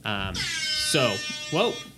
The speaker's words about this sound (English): It is that time, but we pushed it a little bit early. It is rap air horn time. Nice.